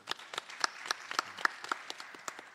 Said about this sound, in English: Our brother Maison, give him a round of applause.